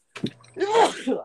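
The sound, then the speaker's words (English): A single loud sneeze: a short sharp intake, then a bursting, voiced 'choo' that trails off quickly. “Bless you, good sir.”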